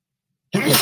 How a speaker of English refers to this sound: And a sneeze.